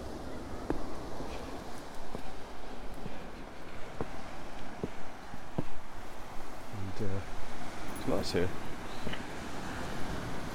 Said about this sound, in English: Just listen to that sea.